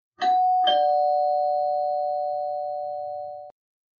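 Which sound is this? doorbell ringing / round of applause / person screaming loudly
doorbell ringing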